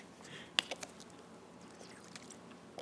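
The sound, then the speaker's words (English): A person sips water, with a few quick wet mouth clicks and a soft swallow against quiet background noise. No one talks. “Sorry, water.”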